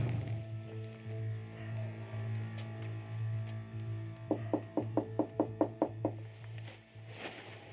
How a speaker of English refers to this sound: We're gonna go to his front door, give it a knock, see if he'll answer a couple of questions.